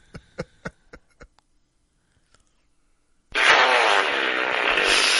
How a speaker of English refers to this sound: Watch this. Alexa, fart.